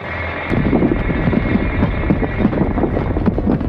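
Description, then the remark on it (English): The Planet Express ship drills down through the Earth's crust with a loud, steady mechanical roar, layered with rapid, irregular grinding knocks and a deep low rumble that sets in abruptly and never lets up. “Once Bender had crated his mother up and hoisted her into the cargo hold, the Planet Express ship began its perilous descent, drilling down through the Earth's crust.”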